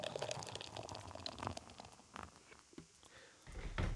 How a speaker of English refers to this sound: Wow. The last beer is poured out, and this thing is fucking beautiful, dude. She's gorgeous.